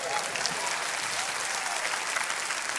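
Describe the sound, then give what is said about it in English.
A crowd applauds the end of 2016 steadily, a dense wash of many hands clapping at once with no break for the whole stretch, loud and even without any voices standing out. “Come on, can I give a hand clap?”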